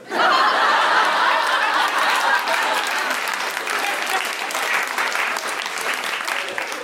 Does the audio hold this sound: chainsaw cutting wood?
no